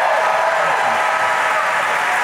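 Steady audience applause fills the whole stretch, a dense, even patter of many hands clapping at moderate loudness with no voices over it.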